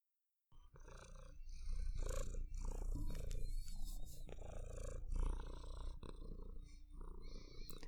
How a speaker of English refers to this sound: purring across state lines. And then she rubs the microphone because it's technically hers.